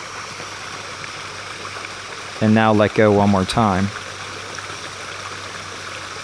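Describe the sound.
A steady, continuous rush of stream water running over rocks fills the whole recording at an even level, with a calm voice speaking briefly over it partway through.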